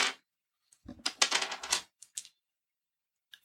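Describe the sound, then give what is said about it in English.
A handful of dice clatters across a tabletop in a dense, rattling burst lasting about a second, followed by a few scattered clicks as the last ones settle. No one speaks. “Oh, I don't like how many dice you're rolling.”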